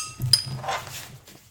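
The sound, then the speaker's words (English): Glasses clink together once in a quick toast, a bright ringing tap, followed by a soft rustle and handling noise fading out. “Yeah, actual cheers, everyone.”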